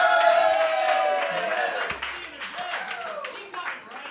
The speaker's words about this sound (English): And when you agree with me, I would like for you to cheer. Give that a shot right now.